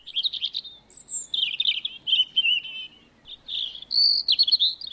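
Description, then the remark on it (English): A robin sings a love song, a lively, continuous stream of high, warbling phrases and chirps, clear, with brief pauses between bursts and no voices. “But birds also create beautiful love songs, like this one.”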